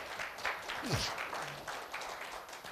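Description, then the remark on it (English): An audience claps their hands together to welcome those watching online, in a steady, dense patter of applause that holds at an even, moderate level, with a brief sliding vocal sound and faint murmurs mixed in. “For those who are watching online all over the world, will you give them a click and just clap your hands and let them know that they're welcome in here today?”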